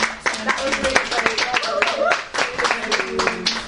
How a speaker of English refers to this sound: Oh, let's give another round of applause.